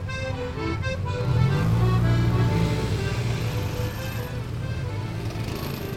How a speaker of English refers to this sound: And as you might be suspecting by the traffic behind me, I have arrived in Rome.